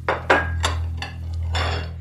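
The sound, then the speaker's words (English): A stack of plates is set down with several clattering ceramic knocks in quick succession, followed by a longer rattling clink, over a steady low hum. “says her mom in a very serious voice, putting down a stack of plates.”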